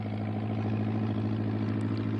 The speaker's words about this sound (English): So in the middle, he pushed the pliant earth with his proud and capable caterpillar.